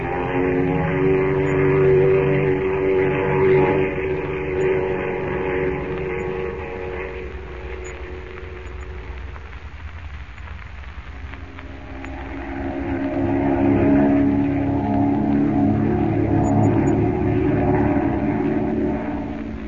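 A propeller airplane's engine drones steadily in flight over Central America, a loud, layered hum that eases slightly around the midpoint before swelling back to full strength. No voices are heard.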